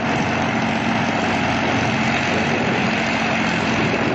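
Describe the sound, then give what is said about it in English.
A small propeller plane's engine drones steadily at high power during takeoff, short of full power as the plane lifts very slowly, a dense, continuous roar with a low throbbing hum underneath, straining without letup for the whole stretch. “I couldn't get full power on the engine, but she started to lift, very slowly, but increasing.”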